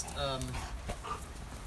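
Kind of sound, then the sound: animal, dog panting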